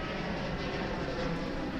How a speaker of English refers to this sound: The rear end itself, I'll just let the plane go over.